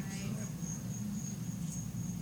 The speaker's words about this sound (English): Oh, I hear crickets. I mean, seriously, I thought I heard a cricket.